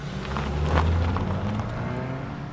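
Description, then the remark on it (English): A car engine rumbles low and steady for a couple of seconds as the car pulls off and quickly drives away, its sound easing slightly toward the end. No voices. “Shane had stormed out of the door, got in his car, and quickly drove away.”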